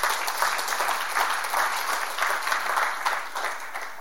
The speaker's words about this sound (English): Come on, give the Lord a good clap offering. Amen.